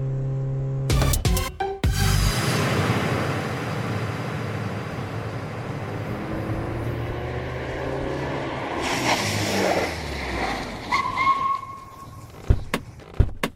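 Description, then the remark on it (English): A car engine rumbles steadily, then the vehicle pulls over at a bus stop and comes to a stop, followed by a few sharp clicks and thuds at the end. “Pull over here at this bus stop and let me ask if anyone saw her.”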